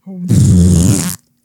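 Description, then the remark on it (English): A loud, drawn-out fart lasting about a second, low, buzzy and raspy with a fluttering texture, preceded by a brief low hum and ending abruptly. “Oh, my butt.”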